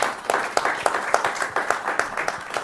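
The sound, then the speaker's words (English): Audience applause rings out at moderate volume, a steady patter of many hands clapping in an irregular, crackling rhythm with no voices over it, lasting a few seconds. “A round of applause as well, maybe.”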